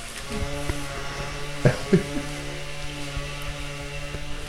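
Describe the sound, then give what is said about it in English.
A string trimmer's small engine drones outdoors at a steady, buzzing pitch for the whole stretch, with a couple of brief louder bursts partway through, and with no voices. “Is he trying to weed whack a tree down right now?”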